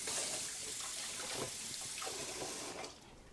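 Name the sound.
tap running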